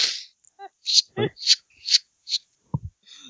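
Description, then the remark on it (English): A voice imitates a deck of playing cards being shuffled: a quick series of hissing, riffling bursts with a few short throaty clicks and squeaks between them, fairly loud. “Shuffling cards.”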